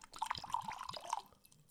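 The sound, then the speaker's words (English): Liquid glugs out of a bottle as it is poured, a rapid run of bubbly gulping pulses over about a second before trailing off into quiet. No one speaks. “But at least we're glugging it. Let's get some glugs. Yeah, we got some good pours.”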